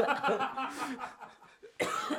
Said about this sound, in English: Dude, you're choking. You're choking